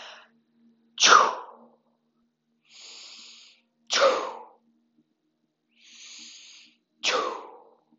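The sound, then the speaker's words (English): Three forceful, sneeze-like 'choo' exhalations, made as if blowing out a candle, burst out at an even pace, roughly three seconds apart, with softer hissing in-breaths between them and no talking. “The sound that we make for these particular organs is choo. As if you're trying to blow out a candle or a sneeze.”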